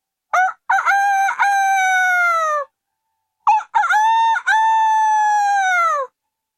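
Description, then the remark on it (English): Two loud crows from village cockerels at dawn, one after another with a short pause between, each a rising multi-part cock-a-doodle-doo ending in a long sustained note, with no voices present. “In the morning, the village cockerels called out to greet the dawn.”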